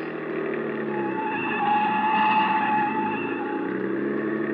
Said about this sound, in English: Hit the gas a little harder. See if you can shake that car behind us. Mais oui. The other car picked up speed to match ours and still held the same distance. Hey, try a couple of fast corners.